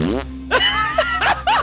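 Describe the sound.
Someone imitates a fart with their mouth: a buzzy, wet opening blurt followed by a few shorter voiced sputters in quick succession, fairly loud.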